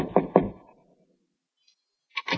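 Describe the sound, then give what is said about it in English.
Two firm knocks on a wooden office door in quick succession, resonant, followed by a pause of silence and then a brief voice answering from inside. “… was in his office, so I knocked on the door.”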